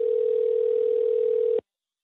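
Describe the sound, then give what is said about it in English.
A single steady telephone ring tone on a leaked 2023 phone call, like a caller hearing the line ring, holds one clear pitch for about a second and a half, then cuts off abruptly into silence. No voices. “Starting with, please brace yourself for, without a doubt, the weirdest phone call to be leaked in 2023 so far.”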